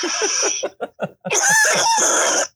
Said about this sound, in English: The post bong hit? Something like that? Yeah, post bong hit cough.